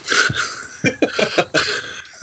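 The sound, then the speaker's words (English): A person coughs repeatedly, a rough opening cough followed by a quick cluster of short, harsh coughs in an uneven rhythm, fairly loud with no talking. “Sorry, I just need to cough.”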